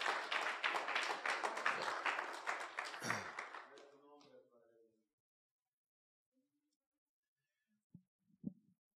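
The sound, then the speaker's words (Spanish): A crowd claps loudly one morning in a dense, steady burst that tapers off after about four seconds, followed by silence and a couple of faint low thumps. “Un fuerte aplauso en esta mañana.”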